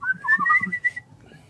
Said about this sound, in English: I can inward whistle. So talented. I can do that. A hidden talent.